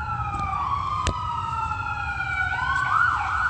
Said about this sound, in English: All right, you got the same pattern. There's sirens at 7:12.